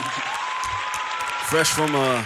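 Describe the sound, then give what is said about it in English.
Steady clapping from a crowd fills the whole clip, a dense crackling wash of applause, with a voice rising over it near the end, like a cheer or shout. “There's going to be a lot of applause this episode, but I got to.”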